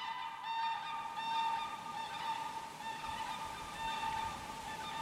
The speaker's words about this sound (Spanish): Las nubes son un toldo frío y unas aves hacen pasadas a baja altura en formación, como en las exhibiciones aéreas.